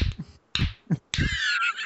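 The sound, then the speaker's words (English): A few light, sharp slaps on skin land in quick irregular succession, with a hissy crowd-like wash rising behind the last ones, as pro wrestler Dragon lightly slaps the arm of an opponent holding him in a sleeper. No one speaks. “Dragon does the most effective thing you would ever do in a pro wrestling sleeper, which is lightly slap the choking arm.”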